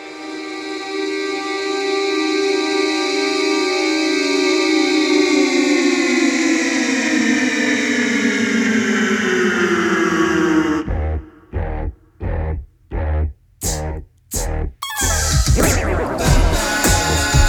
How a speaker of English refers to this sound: If you're looking for character, space, and mood, the Giuliana Deluxe Chorus Vibrato and the Mako D1 Series High Fidelity Echo Machine from Walrus Audio are for you.